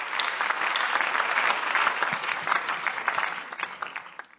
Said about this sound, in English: With a hand clap, shall we welcome Sister Comfort?